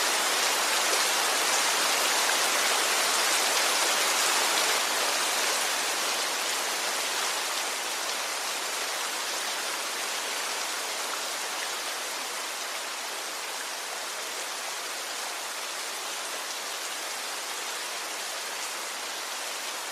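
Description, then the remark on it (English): Steady rain falling in a dense, even hiss with no individual drops standing out, easing slightly in loudness after the first few seconds and then holding constant. No voices. “Visualize the water coming down throughout Canada, wherever there's a fire.”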